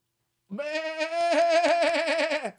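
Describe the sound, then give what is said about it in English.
A single drawn-out sheep bleat, loud, lasting about two seconds and turning into a wavering, quavering tremble partway through before cutting off. “Bah! Bah! Saw the sheeple.”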